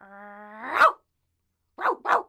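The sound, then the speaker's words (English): A dog gives a short drawn-out whine that breaks into a sharp bark, then after a brief pause barks twice more in quick succession, fairly loud. “The dog opened the door with her mouth and barked.”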